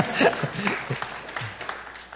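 A short burst of scattered clapping from a church audience, a few people applauding unevenly, with faint murmuring voices underneath as it tapers off.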